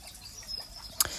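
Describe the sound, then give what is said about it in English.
Soft, steady trickle of spring water bubbling out through a hole in a wall, quiet, with one brief splashy blip near the end. “The water bubbles through a hole in the wall.”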